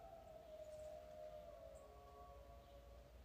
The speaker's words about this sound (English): Excuse me. Me dog's howling. Fucking sounding like a bloody good wolf pup there, though, isn't he?